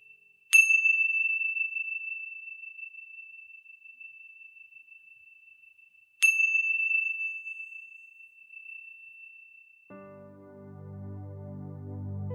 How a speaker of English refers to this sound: Now wiggling your fingers and wiggling your toes, and when you hear the sounds of the chime, coming back into this space.